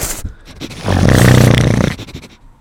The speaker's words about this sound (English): All the dogs have been smelling the damn mics all day. They're sniffing it. They're getting a big sniffy.